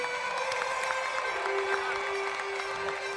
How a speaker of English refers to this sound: I need the applause one more time. I just need it one more time. The golf clap? I just need it because, again.